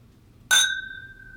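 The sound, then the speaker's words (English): A single bright clink of glasses touching in a toast, followed by a clear ringing tone that lingers and slowly fades over a quiet, faintly hissing background. “I raise my glass to you in honor for the fine work that you're doing for your family and for our Lord.”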